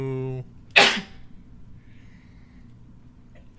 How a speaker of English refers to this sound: I have to sneeze. Bless you.